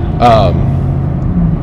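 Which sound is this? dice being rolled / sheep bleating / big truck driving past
big truck driving past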